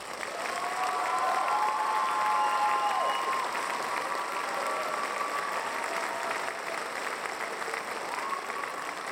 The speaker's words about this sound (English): Insert. This is when you insert crowd noise